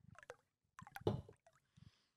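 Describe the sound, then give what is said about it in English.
Iced coffee being poured in front of a microphone in a few short, uneven bursts of sloshing and gurgling liquid, with a louder splashy gush in the middle and faint clinks at the end. “Let me pour it in front of your mic.”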